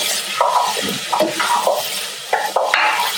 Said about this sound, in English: Would you like to give the noodles a quick stir? I'd love to. Thank you. So as you can see, I'm just constantly moving it around. I don't want anything to burn, otherwise it gives your soup more of a roasted flavor.